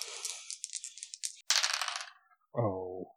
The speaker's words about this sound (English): Okay, so that's a 9 on the dice.